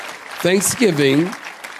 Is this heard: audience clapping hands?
yes